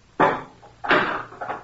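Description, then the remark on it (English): A heavy furnace door, with a big fire going inside, is pried open with a slice bar: a loud metallic clank followed by a second strong scraping clunk and a softer rattle, with no voices. “Take this slice bar and open the furnace door.”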